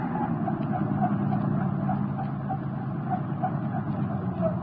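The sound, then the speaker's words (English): A car engine hums steadily at an even level, a low rumble with a faint rhythmic whir running through it from start to finish, as a car drives up on a road and stops. No voices are heard. “Hey, Hendricks, look up ahead. Yeah, I seen it. A car across the road.”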